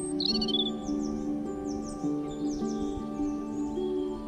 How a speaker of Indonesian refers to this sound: Ada suara dan sensasi angin. Suara burung, suara orang lain.